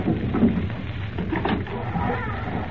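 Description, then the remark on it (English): A deep, rolling rumble of thunder fills the whole stretch, steady and moderately loud with a slight swell near the start, heard on its own without any clear talking. “There's no one here. Thunder.”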